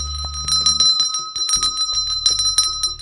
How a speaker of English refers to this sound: And if you find yourself suddenly looking down at a radio script that is very nonsensical because you wrote it very late at night, and there's a bell kicking around in the studio, then do ring it.